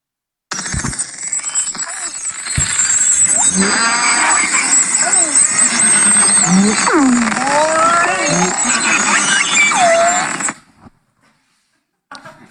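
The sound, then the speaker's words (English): A dense chorus of beluga whale calls recorded underwater: rising and falling whistles, chirps and squeaky trills layered over a steady hiss, loud for about ten seconds before cutting off. “I like, yeah, it is a kind of whale. This is a beluga.”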